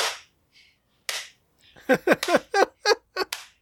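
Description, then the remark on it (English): A quick run of rhythmic hand claps, about eight or nine sharp beats in a steady pattern, preceded by a couple of scattered softer hits, with no one talking; the clapping routine done as an ECW wrestling entrance gimmick. “And Joey Styles would scream into the mic, "They're giving us the clap!"”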